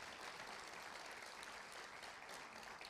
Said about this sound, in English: Do you appreciate how good these musicians are? Could you just thank them? Give us a round of applause, please.